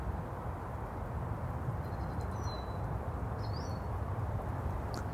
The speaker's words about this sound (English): I take a moment to look up through the branches. And I find that bird making bird song.